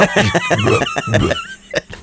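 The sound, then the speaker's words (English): A voice belches the words 'happy birthday', forcing out a string of rough, croaky burp-like vocal bursts in a sing-song rhythm, loud, ending with a couple of short sharp throat sounds. “Happy birthday. Belching it.”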